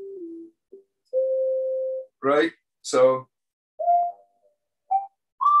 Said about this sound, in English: But I just put it on this. On my Moog over here, it's like a whistle.